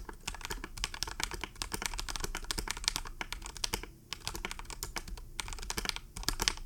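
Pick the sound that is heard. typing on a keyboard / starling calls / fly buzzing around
typing on a keyboard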